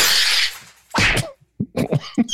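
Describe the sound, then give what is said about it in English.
A glass bottle smashes with a bright, hissy crash, followed by a second loud burst and a scatter of smaller clattering knocks, with no talking. “That's the bottle smashing.”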